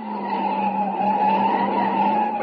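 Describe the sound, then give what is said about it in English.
A car speeding at about 80 with the accelerator floored takes a sharp curve, its tires screeching in a long, steady, loud skid, holding a continuous high whine for a couple of seconds with engine noise underneath and no voices. “Sharp curve ahead. Yeah, I see it. Hold on.”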